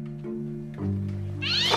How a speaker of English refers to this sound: Jeez! It was just a cat. Let's keep moving. Oh, holy crap! What is up with that cat? Is someone throwing it?